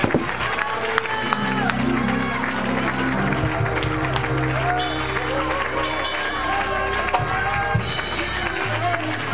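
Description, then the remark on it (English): A church audience claps their hands steadily amid a busy wash of crowd voices and cheering, with sustained low musical tones running underneath throughout. “Come on, church, just clap our hands.”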